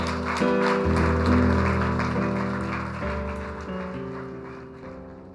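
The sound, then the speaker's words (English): A crowd claps steadily throughout, a dense patter of many hands over sustained keyboard chords that shift every second or so, the whole mix fading slightly toward the end. “Come on, let's clap our hands.”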